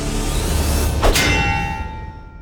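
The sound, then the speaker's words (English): A loud metallic clang strikes once, followed by a bright ringing tone that slowly fades, set against a steady low rumbling background with no voices. “Instead, a loud metal clanging was heard, and the spit became affixed to the eagle's back.”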